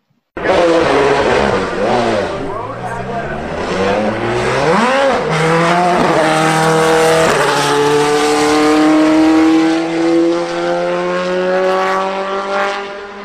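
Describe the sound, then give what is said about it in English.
A race car engine roars loudly and continuously at Road Atlanta, revving up and down through gear changes before settling into a rising high-pitched wail as it accelerates down the track. “Well, it's definitely a race car.”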